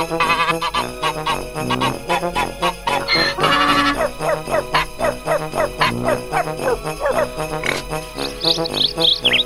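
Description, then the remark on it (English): A rooster crows amid a busy, loud mix of barnyard animal calls, with grunting and squealing noises layered together and a high, drawn-out crow rising near the end. “You always got to use a rooster to close it out.”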